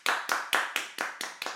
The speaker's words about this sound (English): Round of applause. Yeah.